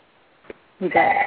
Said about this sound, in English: Is that there? Oh, somebody has a phone ring in there.